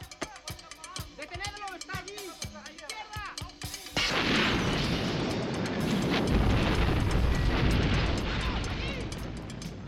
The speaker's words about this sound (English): This is another slight departure for Bond, because he does arrive in a car, a rather expensive Lotus Esprit that has all the gadgets imaginable that Bond would have on a car. But it blows to pieces when somebody tries to get into it.